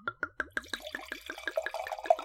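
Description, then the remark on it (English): Dark, deep purple wine glugs from a freshly uncorked bottle into a glass in a quick, rhythmic series of gurgles, fairly quiet, the pitch rising slightly as the glass fills. “Okay, let's give this a pour.”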